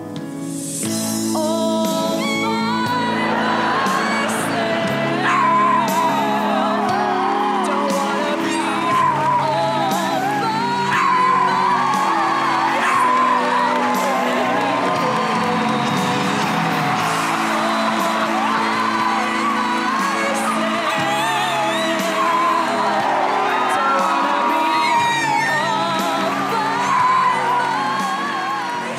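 A dog howls along with a person singing, their long wavering tones rising and falling together, loud and continuous throughout, with no spoken words.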